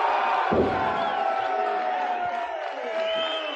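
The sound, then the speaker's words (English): A large wrestling arena crowd roars and cheers continuously for Hacksaw Duggan as fans choose the opponent for a North American title match, with shouts and whoops rising over a dense wall of voices and a brief thump near the start, loud throughout. “And let's see just who the people selected to be the opponent for the North American title.”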